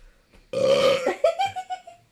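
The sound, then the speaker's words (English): A loud burp bursts out abruptly and rumbles on for about half a second, then trails into a few shorter, croaky gulping bursts as it fades. “That was my burp, listeners.”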